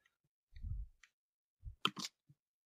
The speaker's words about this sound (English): Typing action on Cavs the Podcast.